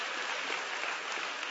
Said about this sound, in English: Come on, give me a hand clap. That's it. That's it. That's it.